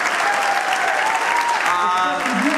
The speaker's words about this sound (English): Can we get a round of applause for everyone today?